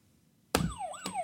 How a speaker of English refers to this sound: So, okay. If you know the answer, ring the buzzer.